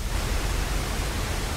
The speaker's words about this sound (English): Cool waterfall.